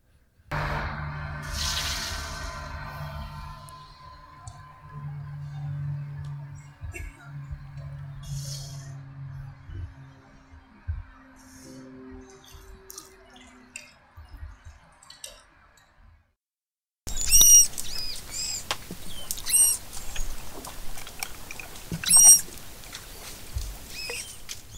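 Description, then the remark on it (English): Florida manatee sounds: first a stretch of splashy, rumbling water noise at the surface, then after a short pause a series of high, squeaky chirps and whistles heard underwater, repeated irregularly. “And hear the sound of the Florida manatee. Now you'll hear it above water, and then you'll hear it underwater.”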